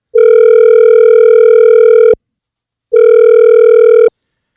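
An outgoing phone call's ringback tone: two long, steady electronic tone bursts, each about two seconds, separated by a short silence, loud and clear with no voices.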